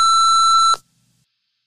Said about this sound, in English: At the beep. Leave a message.